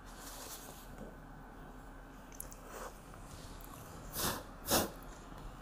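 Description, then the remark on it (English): Cracker crumbs being cleared off a keyboard: a quiet stretch of faint rustling, then two short, breathy bursts near the end, like quick puffs of air. “I have a little bit of cracker on my keyboard.”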